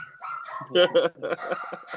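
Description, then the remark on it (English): A dog gives two quick, loud barks, with people talking before and after the barks. “Even the dogs agree.”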